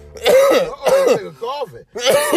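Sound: coughing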